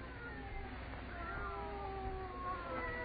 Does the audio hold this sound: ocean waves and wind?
no